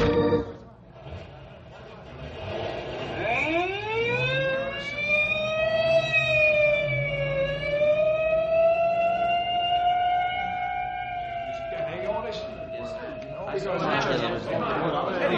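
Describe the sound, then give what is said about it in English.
An ambulance siren winds up in pitch and holds a loud, sustained wail before dropping away, with some indistinct voices and background commotion around it; the ambulance is taking an injured boy away. “may I go along with you in the ambulance?”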